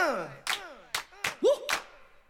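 Sharp, loud hand claps land roughly every half second, about four in all, between swooping sung vocal tones, like an upbeat gospel song with clapping along.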